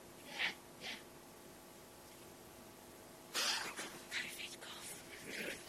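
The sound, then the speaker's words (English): Two short, dry coughs from a person with COVID come first, followed after a pause by a harsher burst of coughing and breathy, rasping sounds. The coughs are fairly soft, with no talking over them. “COVID cough.”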